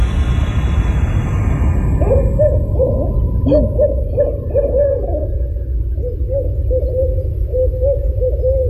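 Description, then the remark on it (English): Two owls hooting back and forth to each other at about 4:10 a.m. in the dark, a series of low, wavering hoots repeating over several seconds against a steady rumble of background noise, sounding somewhat distant with no voices present. “Yeah, it sounds like two owls, obviously.”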